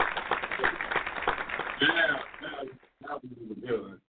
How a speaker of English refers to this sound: Let me try this again, because, you know, we ain't had them hand claps going. Make sure we get them hand claps going, man.